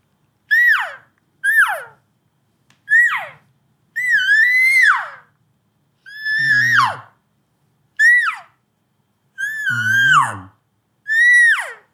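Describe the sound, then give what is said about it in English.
A sample of different kinds of elk cow calls blown on a game call: about eight high, whiny calls, each a sharp descending mew, some drawn out longer and raspier, separated by brief silences. “That's just a sample of the different kinds of elk calls that I might.”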